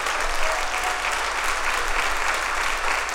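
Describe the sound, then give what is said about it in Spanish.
Steady audience applause for God fills the whole stretch, a dense, even patter of many hands clapping at once with no pauses and no voices standing out. “Vamos, si ese aplauso es para mí está bien, pero si es para Dios, dáselo fuerte.”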